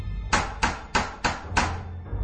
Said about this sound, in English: I think I'll knock on the door. So she went over to the door and knocked on the door.